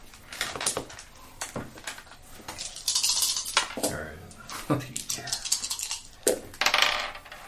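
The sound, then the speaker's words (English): Two players' dice clatter and tumble across a hard tabletop during a tabletop game roll, in several quick bursts of sharp clicks and rattles, with a faint murmur of voices in the background. “Two people have flipped off their dice.”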